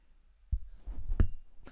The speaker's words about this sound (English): That was the clink of my castor oil opening.